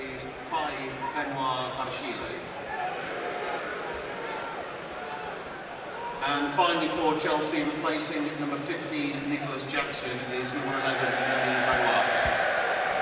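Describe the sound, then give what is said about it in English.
A stadium crowd of away Chelsea fans raises an ironic cheer, a broad roar that swells after a few seconds and grows louder toward the end, with a commentator's voice talking over it. “Chelsea fans who had the ironic cheer there.”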